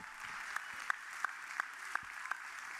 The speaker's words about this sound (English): Not everybody's clapping, it's okay.